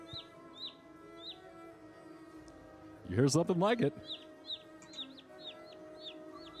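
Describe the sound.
Baby birds in a nest tweet with quick, high peeps that repeat steadily from start to finish, with soft clucking mixed in. A person speaks briefly over them partway through.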